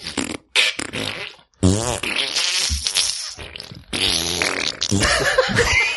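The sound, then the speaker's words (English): Loud, buzzing mouth raspberries imitating farts, made without hands, several in a row with brief pauses between, some sputtering and wet, others longer and wavering, with no speech. “Either just the plain old mouth raspberry or the mouth raspberry fart.”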